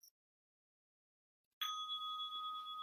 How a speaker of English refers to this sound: People want to get a drink of water or stretch or, and you're going to ring a bell?